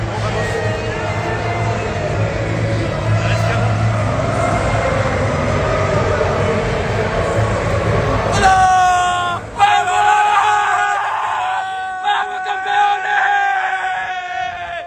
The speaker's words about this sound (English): Upper mid-table finish, and they won the French Cup. And actually, there's a lovely video on Instagram of him and his teammates. I don't know what they're shouting, something in French, but maybe our listeners will be able to tell us.